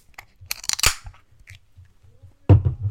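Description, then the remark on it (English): A container of Puff Tart, a 4.8% sour ale with milk sugar, raspberry, blackberry, blueberry and vanilla, being cracked open: a few small clicks and crinkly handling noises, then a sudden loud crack with a short rushing fizz afterward. No one speaks. “We're going to crack this bad boy open.”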